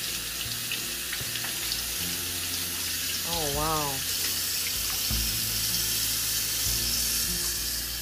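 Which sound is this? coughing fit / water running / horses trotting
water running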